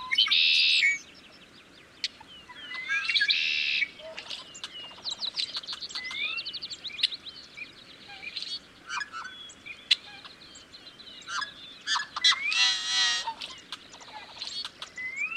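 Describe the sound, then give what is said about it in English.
A chorus of yellow-headed blackbirds perched on top of cattails in a wetland gives harsh, buzzy, rasping calls and squeaky chatter, overlapping continuously with louder bursts near the start and again toward the end, with no one speaking. “Most any wetland across the country will have red-winged blackbirds, but yellow-headed blackbirds are found mostly in western wetlands.”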